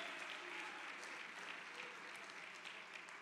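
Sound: audience applause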